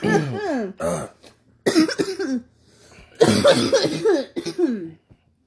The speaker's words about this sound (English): If you didn't cough, you didn't get high. I'm just saying. I don't always smoke, but when I do, I cough. I choke.